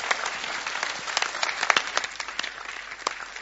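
A crowd applauds steadily, many hands clapping in a dense, crackling wash with a few sharper individual claps standing out, sustained at an even, moderate level throughout.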